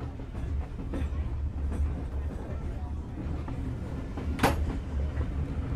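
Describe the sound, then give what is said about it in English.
A packed train on the Watercress Line rumbles steadily as it pulls out of Alresford Station on a late December morning, with low mechanical drone, faint rattles and a sharp metallic squeal or clank midway, heard from inside a crowded carriage with indistinct voices underneath. “Just caught the train in time. It's absolutely packed as we pull out of Alresford Station.”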